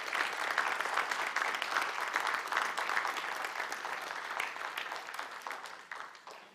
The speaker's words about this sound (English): Come on, stand with me as you give the Lord a big clap. Come on, give the Lord a clap.